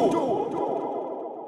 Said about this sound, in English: Well done. You're going to put a bit of echo on that, aren't you?